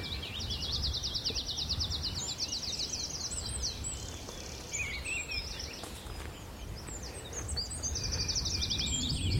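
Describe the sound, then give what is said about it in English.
A tree pipit sings from the top of a tree: fast, high trilled phrases of rapidly repeated notes open and close the passage, with scattered thin chirps between them over a steady low rumble. “Yeah, so up he flies, the tree pipit, on the top of a tree, sings, and then parachutes back down.”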